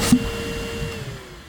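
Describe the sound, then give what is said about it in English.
A vacuum cleaner runs in a steady, continuous whirring drone with a faint motor whine, loud, lasting about a second and a half with no one talking. “It's like an ocean vacuum cleaner.”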